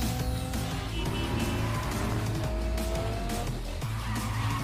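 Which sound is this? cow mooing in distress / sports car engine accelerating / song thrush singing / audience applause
sports car engine accelerating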